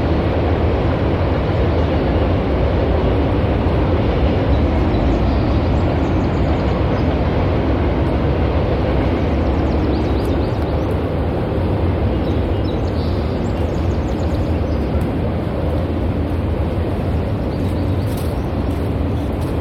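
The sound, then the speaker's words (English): A freight train carrying double-stacked shipping containers, little ones and big ones, rumbles steadily past, a loud, continuous low roar with rattling clatter that holds constant for the whole stretch, no voices on top. “That's containers. They carry them on trucks and ships, but they're double stacked.”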